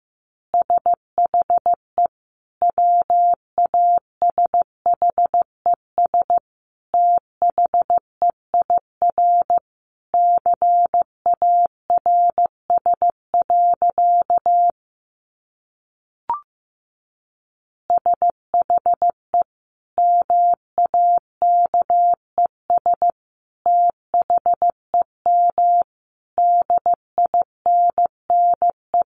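Morse code of easy practice phrases sent at a steady 15 words per minute: a single mid-pitched tone keyed into short and long beeps, clear and alone, with a brief silent pause partway through.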